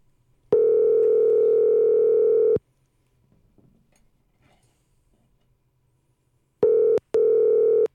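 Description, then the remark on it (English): A loud, steady telephone dial tone hums for about two seconds while a call is being dialed to the world's largest truck stop, then cuts out to near silence before returning near the end, briefly broken by a couple of quick clicks. “Oh, wait. I have the phone. I'll dial.”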